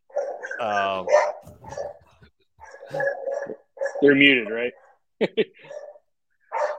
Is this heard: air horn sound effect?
no